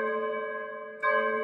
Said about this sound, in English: We open up with Boba and Fennec Shand in the ruins of Garsa Flip's sanctuary cantina. Bells, I guess, for Garsa Flip.